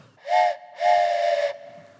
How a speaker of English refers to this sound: I've got a train whistle.